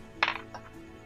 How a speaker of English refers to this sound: Oh shit. My dice flew out of my hand. But I rolled a 10 plus 21. That's a 31.